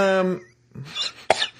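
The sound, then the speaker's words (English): A brief voiced sound gives way to a couple of harsh, breathy coughs, the second one sharp and loud, with no talking over them. “I just got a cough.”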